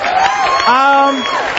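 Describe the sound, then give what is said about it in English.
An audience applauds in a steady, dense patter, with a few raised voices and whoops rising above the clapping throughout the short burst. “Yeah, applause only makes it worse.”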